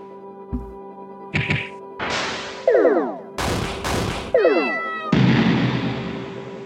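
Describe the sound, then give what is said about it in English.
Video game sound effects of kittens fighting in Battle Kittens 4, Super Force: repeated cartoonish meows mixed with sharp thwacks and impact bursts, loud, in quick succession with no talking. “Looking at my computer, there isn't anything useful on the computer, but you are trying to beat your high score on Battle Kittens 4, Super Force. Play some video games? Yes, just one try.”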